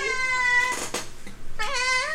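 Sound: cat meowing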